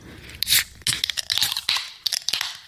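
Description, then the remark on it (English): Energy drink cans being cracked open: a run of sharp, crunchy metallic crackles and hissing bursts over a couple of seconds, fairly loud and with no talking. “Can I crack this open? Yo, boys, let's crack these open. I'm thirsty.”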